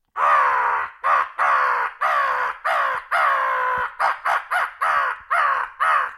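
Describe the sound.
A person imitates a crow, letting out a rapid series of about a dozen harsh, raspy caws, some drawn out and others clipped short, loud with brief gaps between them.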